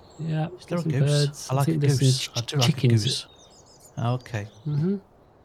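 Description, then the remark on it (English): A small bird on Left Field Farm chirps in short, high tweets, mostly faint and partly buried under a person talking, with a few clearer chirps slipping through the pauses in speech. “Talk about a little bird tweet.”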